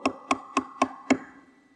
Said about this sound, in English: 9:30, 10 o'clock at night, there comes a knock on your door.